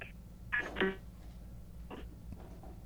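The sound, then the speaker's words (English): A cell phone call rings out with no answer, a short pair of electronic tones followed by fainter repeats, heard quietly over a steady low hum. “Whose cell phone rings that many times?”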